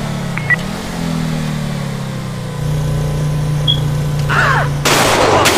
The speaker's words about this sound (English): Oh shoot. Gunshots.